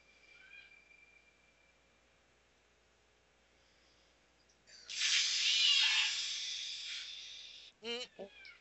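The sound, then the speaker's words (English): After a few quiet seconds, a cat lets out a sudden, loud, breathy hiss lasting about three seconds, followed by a couple of short, sharp yowling cries, as a cat scare in a horror movie. “What would a horror movie be without a cat scare?”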